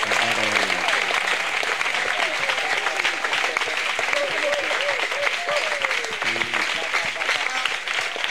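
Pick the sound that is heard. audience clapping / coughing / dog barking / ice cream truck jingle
audience clapping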